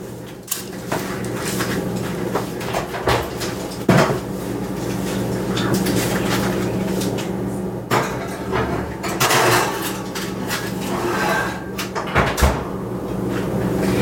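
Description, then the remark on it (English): An oven door opens and closes with several sharp clunks and metallic rattles as a dish of chicken slides in to bake, all over a steady low electrical hum, with no talking. “Now we're going to put the chicken in the oven, and it's going to bake for 40 minutes.”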